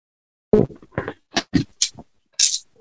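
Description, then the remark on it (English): Dice rattle and clatter in a quick run of sharp, uneven clicks and knocks, ending with a bright final tap, rolled for a persuasion check and landing on 19, with no voices over them. “Probably should have got the dice out before saying a roll of persuasion.”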